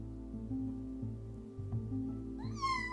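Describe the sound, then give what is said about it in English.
A child's voice gives a single high, rising meow in imitation of a cat near the end, after a stretch of steady low background hum. “Meow. Oh, you're a cat.”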